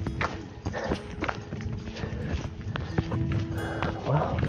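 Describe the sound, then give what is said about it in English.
Dog tags jingle in a quick, steady rhythm as a dog trots on a walk with a spring in its step, the light metallic clinks mixed with soft footsteps over a continuous outdoor background. “You can probably hear his dog tags jingling.”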